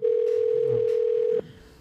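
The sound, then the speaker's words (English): A steady, loud telephone dial tone hums continuously for about a second and a half as a call is being placed, then cuts off abruptly, leaving faint background noise. No one speaks. “Let's make sure I got the number right here handy. Let's see if this works.”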